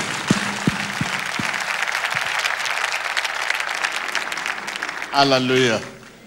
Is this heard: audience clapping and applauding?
yes